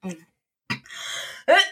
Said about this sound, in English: Excuse me? Gesundheit.